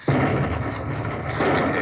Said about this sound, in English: Well, I'll feel better when I hear that explosion.